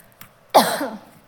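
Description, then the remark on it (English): A single fairly loud cough bursts out after a brief faint catch of breath, trailing into a short rough voiced tail before fading. “how do you do this? You just cough?”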